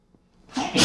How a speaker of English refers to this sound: gonna sneeze, hold on.